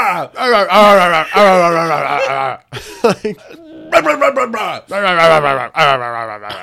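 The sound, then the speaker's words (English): A man's voice mimics a hawk call with strained, wavering cries and rough, throaty bursts, loud and repeated in several uneven phrases separated by short gaps. “Like, that's supposed to be like a hawk call or something.”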